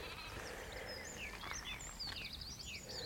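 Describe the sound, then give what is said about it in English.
Sheep and lambs bleat in the open air on moorland with gorse in mid-June, a short wavering call rising over steady background rustle, while small birds chirp and trill high above throughout. “Song thrushes, wrens, blackbirds, sheep, lambs, hoverflies all over the gorse.”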